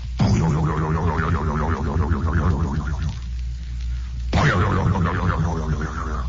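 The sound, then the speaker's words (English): Deep chimes of the Big Ben clock bell ring out, two strikes a few seconds apart, each swelling into a long, wavering hum of overtones over a steady low drone, with no voices. “I am hearing Big Ben in the Nigerian bush.”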